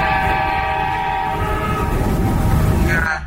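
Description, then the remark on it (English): A loud, sustained train-style car horn blares continuously in traffic, a chord of steady tones held for about three seconds over a rumbling low end before cutting off abruptly. No one speaks. “Would you like to upgrade your hooter prank”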